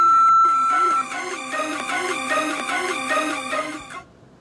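A single steady, mid-high voicemail beep from the Trap Therapy voice mailbox holds for about a second. It is followed by a loud, wavering, rhythmic tonal sound that rises and falls for roughly three seconds before cutting off.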